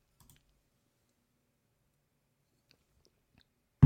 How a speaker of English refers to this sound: What was that? What was that? Oh, everydayers know that's what we call the second segment sip, which means we are refreshed, refurbished, we're keeping dry mouth out of the picture, and we're ready to go.